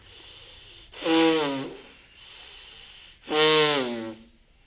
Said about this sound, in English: You will experience the change, accept the change. Any experience that comes, just continue long in the hissing breath.